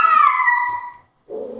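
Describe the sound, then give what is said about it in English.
A pet dog gives a drawn-out, falling howl, breaks off briefly, then lets out a lower whimpering whine. It is fairly loud, with no talking. “Clearly my dog's just gonna”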